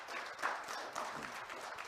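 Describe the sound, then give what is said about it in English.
A crowd of people giving God a hand clap of praise, steady, dense applause, a continuous crackling wash of many overlapping claps that holds at an even, moderate level throughout with no voices. “Why don't you give God a hand clap of praise for that?”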